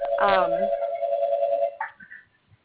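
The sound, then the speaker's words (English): A phone rings with a steady electronic tone that holds for almost two seconds, a voice briefly talking over its start, then the ringing cuts off. “Someone has their phone ringing.”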